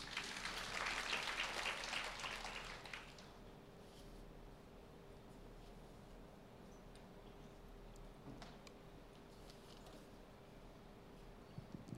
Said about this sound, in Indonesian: Berikan tepuk tangan.